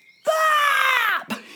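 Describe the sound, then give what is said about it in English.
A group of voices lets out one long, loud squawk together as a warm-up, counted in on three, imitating a bird: a harsh nasal wail lasting about a second that slides slightly downward before cutting off, followed by a brief breathy trailing sound. “So let's get ourselves all warmed up with a great big squawk.”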